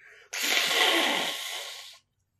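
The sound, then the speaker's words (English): A single loud, forceful nose blow: a harsh, hissing rush of air that starts abruptly and lasts under two seconds before cutting off into silence. No one speaks. “I'm going to blow my nose now so I can edit you talking out, and so I win.”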